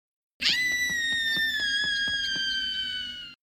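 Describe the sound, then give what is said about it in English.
A woman's shrill scream rings out a block away, one long unbroken high-pitched wail held steady for about three seconds before cutting off, loud and with no talking around it. “You guys, there's a woman screaming a block away.”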